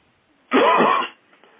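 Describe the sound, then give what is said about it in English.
A person coughs and clears their throat during a prayer in one loud, rasping burst lasting about half a second, followed by quiet. “Now, what I want you to do is cough those snakes out right now.”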